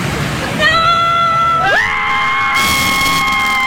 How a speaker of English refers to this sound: So we're venting our frustrations this evening as a group, collectively. We are venting, and we will scream to the heavens.